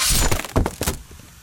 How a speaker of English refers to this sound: A long, smoky steel blade burst through the wood, scalding the air less than 2 inches from his nose.